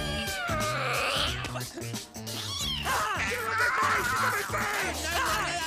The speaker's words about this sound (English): Whoa, that cat is obviously defective. What is wrong with you? You're gonna give it a heart attack.